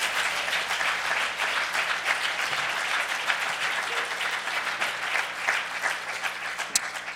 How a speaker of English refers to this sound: give God a hand clap of praise on today.